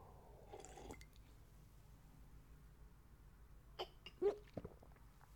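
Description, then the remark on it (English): A voice imitates a man behind a counter taking a swig of water, with a few quick, wet throat clicks and swallows bunched together near the end, after a quiet stretch with faint noise. No words are spoken. “He just looks at me, takes a fucking swig of his water.”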